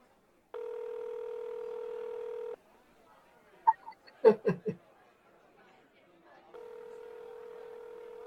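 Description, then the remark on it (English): A steady telephone dial tone hums for about two seconds, breaks off for a cluster of short clicks and brief voices, then the dial tone returns and holds to the end. “Call him on the phone and bitch at him.”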